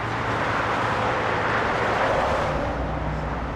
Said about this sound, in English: So this is the sounds. You hear them day and night. I still live the equivalent of a block, 3/4 of a block from the highway. You get used to it at night.